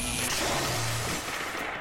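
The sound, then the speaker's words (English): A loud, crackling burst of thunder with a sharp lightning crack, dense and rumbling throughout before easing slightly toward the end. No voices are present. “Just then, the sound of crackling thunder resounds across the arena as a bolt of pure blue lightning strikes outward from the fog, piercing through both Von Hosen and Thurum.”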